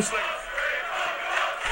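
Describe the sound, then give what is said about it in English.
A large UK wrestling crowd roars and chants before the start of a match in a dense, continuous wall of cheering, loud and sustained throughout with no clear individual voices standing out. “Let's go, UK crowds. I love UK crowds.”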